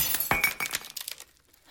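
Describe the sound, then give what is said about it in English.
Glass shatters with a sharp crash, followed by a scatter of bright tinkling shards that fade out within about a second; loud, no voices. “The shards unfortunately missed anything vital.”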